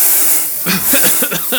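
A steady, bright hiss of hairspray sprayed from an aerosol can by women in a roaring crowd runs the whole time, with murmuring voices and crowd chatter joining underneath partway through.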